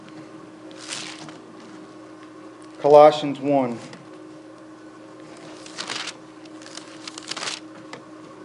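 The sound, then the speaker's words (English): Soft, papery rustles of paper Bible pages being flipped to Colossians 1, one brief flutter early on and a few quick turns later, with a man speaking briefly in between. “I know screens are helpful, but it's still good to feel that old paper flip, isn't it?”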